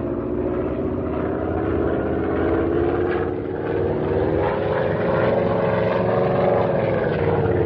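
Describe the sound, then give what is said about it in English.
A propeller airplane's engine roars loudly and continuously, its droning pitch rising as the plane dives out of the sky in a low buzzing pass over a pack below, with no voices. “This ought to be far enough away to start in for a buzz.”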